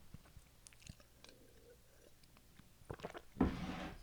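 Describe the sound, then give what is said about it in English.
Someone takes a drink: soft wet mouth clicks and a few quiet gulps, ending in a louder, breathy rush of air as they finish. No one speaks. “I'm just putting my feet in the water and excuse me, I take a drink here.”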